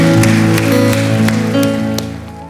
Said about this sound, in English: Can we give these seven individuals that raise their hand a huge round of applause? Yeah, what an awesome moment.